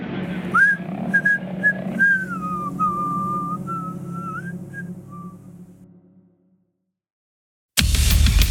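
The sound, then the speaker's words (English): A person whistles a short, wavering tune of sliding notes over a low background hum, which fades into silence before a sudden loud burst of noise cuts in. “Good thing he can whistle.”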